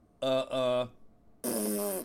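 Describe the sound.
A voice blows two quick raspberry-style fart imitations, followed by a longer, buzzier one with a hissy edge after a brief pause; loud, no actual speech.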